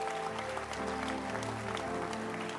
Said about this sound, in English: Clap your hands for the Basenta leaders.